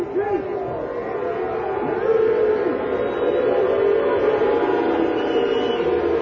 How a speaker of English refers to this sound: Those are them. Now, this is not the opposing team. This is the actual team. These are the fans of the Kansas City Chiefs, and they're booing their team for this quote-unquote show of unity in the middle of the field before the game.